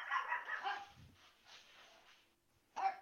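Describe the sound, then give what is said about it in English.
Dogs barking in a few scattered bursts: a cluster of barks at first, a softer one in the middle, then one last sharp bark, all somewhat muffled and fairly quiet. “Okay, dogs have calmed down.”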